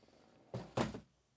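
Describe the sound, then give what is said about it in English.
Leather on a book cover squeaks and creaks in two short bursts as it is handled, the second slightly louder, with quiet before and after and no talking. “You can hear some leather squeaking.”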